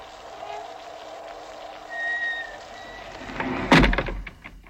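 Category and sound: household object, door closing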